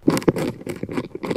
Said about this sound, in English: And the vibration they chose to test was caused by a caterpillar chewing.